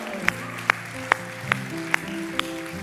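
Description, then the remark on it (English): Hand clapping given to the Lord by a standing audience, in a steady, even beat, six sharp claps about half a second apart, over a sustained low musical hum. No clear shouting stands out. “Let's give the Lord a shout and a hand clap, all of us.”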